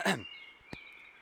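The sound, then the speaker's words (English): A man who is dictating gives one short, sharp cough, then a faint, thin high-pitched tone lingers with a single soft click partway through. “Oh, don't cough, …. When one is dictating, one should speak fluently and not cough.”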